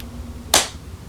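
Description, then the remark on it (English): A single sharp hand clap, made to sync audio recordings, cracks out of a quiet background, bright and percussive, fading within a fraction of a second. No voices are heard. “Clap, and so you can sync it.”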